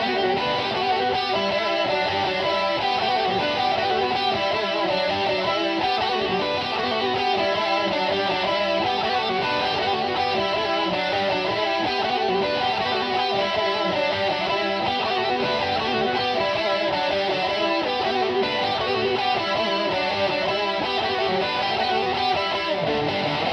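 Heavy metal with twin guitars playing harmonized melodic lines over driving riffs, loud and dense throughout, with a steady galloping rhythm and no voices.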